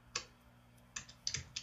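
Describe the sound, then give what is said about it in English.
Quick, irregular keystrokes on a computer keyboard, several sharp clicks in short bursts, fairly quiet with a low steady hum underneath and no voices. “No, but I can hear you typing like a madman.”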